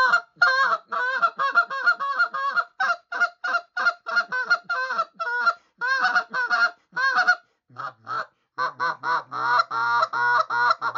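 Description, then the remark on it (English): A goose call blown to bring geese in, in a rapid run of short honks, breaking into a lower, quicker chattering murmur near the end, loud with no voices. “If they go to peel, then you can take that slow murmur to. You know, you can speed up that murmur and change that.”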